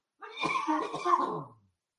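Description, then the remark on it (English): A short, raspy coughing fit from allergies: several rough coughs run together in quick succession for about a second and a half, fairly loud, with no talking. “man, I got the coughs.”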